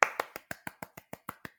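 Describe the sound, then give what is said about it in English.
Brief, thin applause prompted by a mention of writing on season 2 of the TV show Smash: about a dozen quiet, sharp claps in a quick, even rhythm, sounding like only one or two people clapping, with no voices. “Usually there's more applause than that, but that's fine.”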